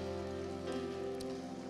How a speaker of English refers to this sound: Can we give a big round of applause to Evangelist Andrew Cannon?